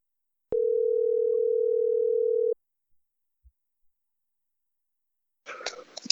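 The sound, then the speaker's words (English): A single steady ringback tone on an outgoing phone call to a friend on Father's Day, lasting about two seconds and clear, followed by a long silent gap before a short burst of crackly noise at the end. “Let's see if he picks up the phone, people.”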